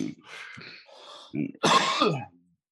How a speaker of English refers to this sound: Oh man, it tastes good. This is pretty smooth. I'm coughing because I took a big old rip, man.